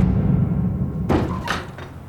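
From a trailer for the movie Toad Road: a low rumbling hum runs underneath, then a sharp, dull punch lands with a thud, followed half a second later by a second, softer impact as someone gets knocked out.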